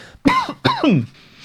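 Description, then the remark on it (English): Two loud coughs in quick succession, each a sharp burst trailing off into a rough, voiced rasp, with no talking around them. “How am I the one coughing and you're not?”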